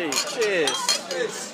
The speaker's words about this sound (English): Okay, why don't we raise our glasses to Jake Bonham? Let's have a cheers to Jake Bonham.